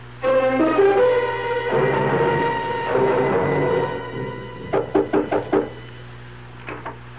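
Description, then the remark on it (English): A burst of about five sharp knocks on a door in quick succession, then two more after a short pause, following a stretch of music that fades out. “My aunt doesn't answer the door. Could you come up and open it with your key?”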